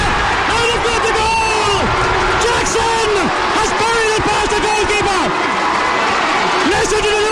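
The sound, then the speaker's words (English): A huge crowd roars and cheers at a Gaelic football match, many voices shouting and whooping at once in a loud, unbroken wall of sound that swells and dips for several seconds. “Listen to the Loud crowd!”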